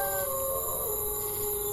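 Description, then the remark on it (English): Wolves howl in long, overlapping tones, several sustained cries gliding slowly in pitch over a steady background hiss, with no one speaking. “Oh yeah, with the wolves howling.”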